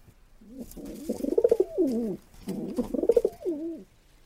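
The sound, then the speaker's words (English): Two repeated phrases of an English carrier pigeon cooing, each a throaty, rolling burble that rises and falls over about two seconds, with no other voices present. “That sound that you are hearing is that of the English carrier pigeon, and depending on where they are coming from, they might look a little bit different.”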